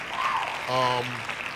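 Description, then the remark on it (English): A steady, crackling wash of hand claps runs through the whole moment, and a short voiced hum or sung note rises over it partway through. “Hand claps to that.”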